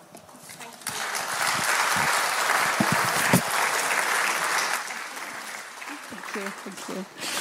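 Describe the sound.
A church audience breaks into sustained applause, a dense steady wash of clapping that swells quickly, holds for several seconds, then thins as a voice begins speaking near the end.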